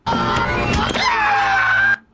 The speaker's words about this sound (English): Because my man still gets his ass beat. Oh, damn. He's like, God damn. And also, on top of getting his ass beat, still screaming.